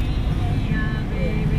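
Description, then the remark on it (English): An old truck engine idles with a steady, throaty low rumble that holds without pause from start to finish, with faint higher mechanical whines drifting over it. “We got a work going truck now.”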